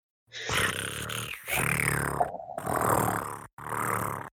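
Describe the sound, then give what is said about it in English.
A person imitates a cat's purr with a rough, throaty rumbling voice, delivered in four fairly loud bursts separated by brief pauses. “I'm pretty sure humans can't make a purring sound.”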